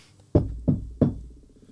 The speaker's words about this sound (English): I'll knock the door this time.